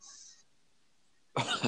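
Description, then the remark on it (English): After a faint breathy hiss and a moment of near silence, a single harsh cough bursts out, loud and abrupt, cut off at the end. “I have to get rid of this cough.”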